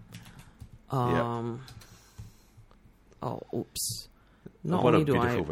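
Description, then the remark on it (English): Quick bursts of typing keyboard shortcuts on a computer keyboard, moderately loud, with short pauses between key clusters, mixed with a person talking and some brighter clicks. “Rely on keyboard shortcuts, but I also remapped a pair of my keys recently.”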